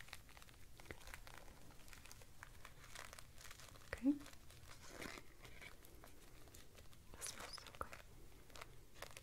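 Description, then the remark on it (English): Soft, delicate crinkling continues throughout, a quiet stream of tiny irregular crackles and rustles, with one brief sharper tap partway through. No one speaks. “I always love the crinkles, especially such delicate crinkles like this.”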